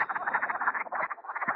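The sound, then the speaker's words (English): A dense chorus of wood frogs and boreal chorus frogs, rapid clucking croaks and pulsing trills overlapping continuously at a steady, moderate loudness, with no one speaking. “First are the wood frogs and the boreal chorus frogs.”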